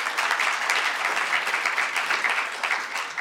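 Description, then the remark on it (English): Sustained applause from an audience in Auckland, celebrating the city becoming a C40 city, a dense, steady patter of many hands clapping at once, fairly loud and even throughout with no voices standing out above it. “Why don't we give us another round of applause?”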